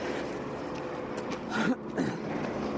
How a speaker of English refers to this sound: The lorry is coming, though, on the way.